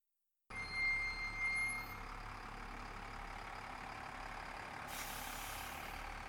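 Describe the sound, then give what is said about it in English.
A large Buela Express bus rolls over gravel, pulling into a rest stop outside Laytonville, with a low, steady rumble and thin, high brake squeals, then a sharp hiss of air brakes near the end. No one speaks. “The sound of gravel beneath the tires, followed by the squeaking brakes of a Buela Express, woke Marina from the dream.”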